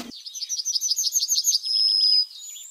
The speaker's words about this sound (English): Tweet of the Week is Yellowhammer, one of the best known of all bird songs.